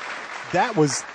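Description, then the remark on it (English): Steady clapping for guests on the show Wheels Off Liberty fills the whole clip, with a couple of short voiced whoops or cheers rising over it midway. “Let's give them a warm applause for coming on Wheels Off Liberty, guys.”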